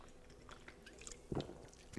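Quiet mouth sounds of someone drinking sour pink lemonade from a can: a few soft wet gulps, with a stronger swallow midway and another near the end, over faint background hiss and no talking.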